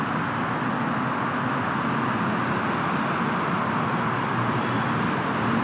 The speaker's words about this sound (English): you can see through the fir trees and the maple and the sycamores and the scrub, the highway, and it's relentlessly endless stream of cars going in both directions.